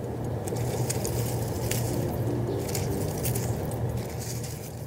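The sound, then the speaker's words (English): Leaves rustle outdoors in a steady, dense wash of crackly noise, with brief brighter crinkles scattered throughout and a low, constant hum underneath. No one speaks. “That's actually the sound of leaves rustling.”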